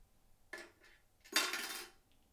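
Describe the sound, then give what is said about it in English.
A glass is shuffled and set down on a table: a short clatter, a brief pause, then a louder, longer rattling scrape of glass against a hard surface that trails off. No one speaks. “So I'm shuggling the glass. I'm putting it down.”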